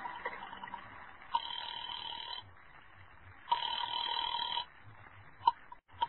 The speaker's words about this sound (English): I took a chance that the old dame on the phone might have been brushing me off the other night. And I went to a booth and dialed a number.